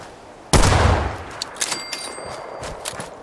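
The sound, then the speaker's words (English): A loud gunshot in a video game cracks out and rolls into a long, reverberant, delayed echo off the hills, followed by a few fainter shots and a thin ringing tone, with no one speaking. “Is that gunfire echoing?”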